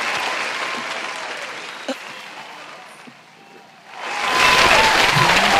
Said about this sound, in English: It's a standing ovation. It's as long as hell.